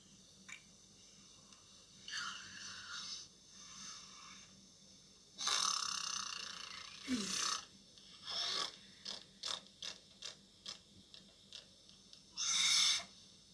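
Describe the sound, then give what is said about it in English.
Someone blows raspberries with the mouth: sputtering, breathy bursts of varying length, a few long ones and then a quick string of short ones. “I also do raspberries.”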